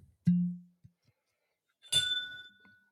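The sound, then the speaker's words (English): Heaven's Door cask strength whiskey being poured into a glass: a dull knock of a bottle, a pause, then a bright glassy clink with a ringing tone and a brief trickling pour that fades out. “What are you pouring?”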